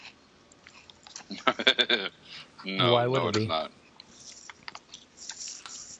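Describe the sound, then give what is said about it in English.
Crisp crunching of dry cereal being chewed in a quick burst, then a short spoken phrase and a few softer scattered crunches afterward. “It's like eating little graham crackers.”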